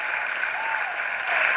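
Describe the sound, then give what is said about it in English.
Steady, dense applause from an audience, a continuous wash of many hands clapping at once that holds a fairly even loudness and swells slightly at the end. “Oh, the audience loved that one. Just let them clap themselves out.”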